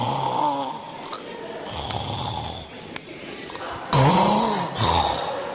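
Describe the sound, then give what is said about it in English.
A voice imitates snoring: a few rough, throaty inhales and buzzing exhales in a slow rhythm, moderately loud, with the strongest snore near the end. “A snoring person is breathing from both the nose and the mouth.”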